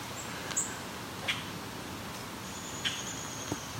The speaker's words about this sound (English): This is a grackle calling.